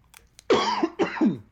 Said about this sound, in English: You gotta hold back the coughing.